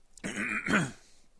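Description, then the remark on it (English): A harsh, choking cough bursts out in two strained, throaty pushes over about a second, loud and raspy, as someone sputters after a sip of water, chugged during laughter on a live show, went down the wrong way. “And it went down the wrong way.”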